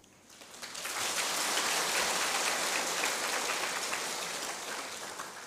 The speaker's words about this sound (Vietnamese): Sư phụ vừa nói, huynh đệ phải thương nhau, giúp nhau cho tới giờ phút cuối cùng. Mọi người nghe cảm động vỗ tay.